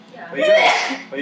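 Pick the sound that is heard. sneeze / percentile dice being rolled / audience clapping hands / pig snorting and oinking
sneeze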